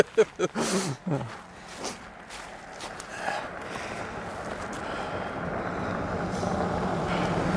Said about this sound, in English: Oh, no, here's another car. It's a traffic jam. Oh, dear.